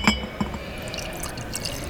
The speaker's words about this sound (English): So we'll pour a little malt whiskey. That's a sound I always love to hear.